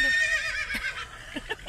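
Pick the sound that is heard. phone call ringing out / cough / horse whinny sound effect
horse whinny sound effect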